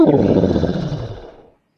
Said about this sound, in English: But the tigress growled.